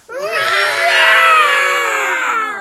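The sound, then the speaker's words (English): A Godzilla growl sound effect from a pinball machine: one loud, harsh, screeching roar lasting a couple of seconds. It rises sharply, holds steady with a shrill, rasping edge, then tapers off. “Let's go to the Godzilla, what they're calling a growl. A Godzilla growl.”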